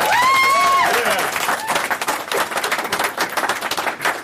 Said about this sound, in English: So I just want to give everybody a round of applause up here.